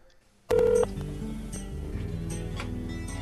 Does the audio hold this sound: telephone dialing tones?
yes